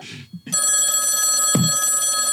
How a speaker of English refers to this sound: There's a phone call coming through. I don't know if you can hear the phone call.